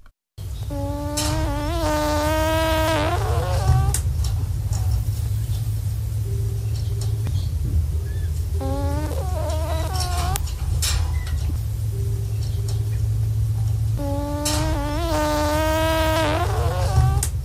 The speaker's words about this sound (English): And now, the final step in the relaxation process, listen to an echidna snore.